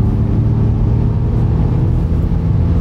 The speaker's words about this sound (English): Yeah, almost sounds like a kind of space age internal combustion engine. Got some of that kind of Star Trek mojo.